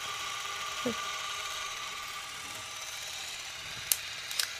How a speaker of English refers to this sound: It sounds like the stock sound they use in a documentary. Mm-hmm. It sounds like a 1960s 16mm camera.